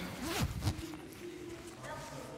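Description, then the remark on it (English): A coat zipper rasps in a couple of quick pulls near the start, with a voice murmuring softly around and after the zipping. The coat has two zippers. “How do you zip this thing up? It's got two zippers on it.”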